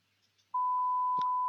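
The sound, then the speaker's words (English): A steady, loud censor bleep tone from a swear-word buzzer button being tested starts abruptly after a quiet moment and holds unbroken to the end, with a brief thump partway through. “just to say as well that Ozzy does have his finger on the buzzer, just in case anybody does make a swear word.”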